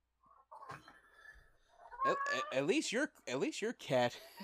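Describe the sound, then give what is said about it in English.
A cat named Lucy meows several times, starting with a faint, drawn-out cry and building into louder, wavering meows in quick succession. “This cat just meowing.”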